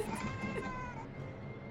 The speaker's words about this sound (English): I'm going to take a few seconds to shut the cat out of the archive. Shoo the cat away.